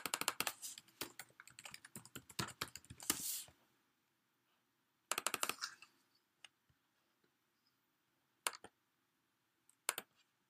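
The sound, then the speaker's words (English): Dry scratching of a pen writing on a piece of paper: a busy run of quick strokes for a few seconds, then silence broken by short isolated bursts and faint taps. “Yeah, I'm just writing.”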